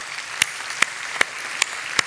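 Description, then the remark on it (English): A crowd at a worship service claps together as a clap offering to the Lord Jesus, in a steady, even beat: five sharp unified claps about twice a second over a continuous wash of scattered hand claps and room noise, with no talking. “Let's give the Lord Jesus a clap offering this morning.”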